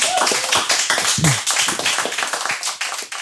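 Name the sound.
audience applause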